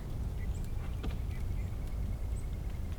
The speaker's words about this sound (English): And mixed in with that the soft, whispery tinkle of bluebirds.